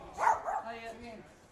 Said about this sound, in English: Did you notice the dog attacked him and not me? Just that 2 seconds of absolute fear.